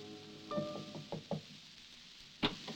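Soft knocking on a wooden door in the cold gray light of morning, a short cluster of muffled raps followed by a pause and one more knock, quiet with no voices.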